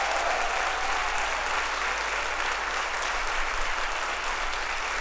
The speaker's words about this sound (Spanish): Alguien puede darle un aplauso al Rey que vive para siempre. Vamos, si lo va a dar, dáselo fuerte.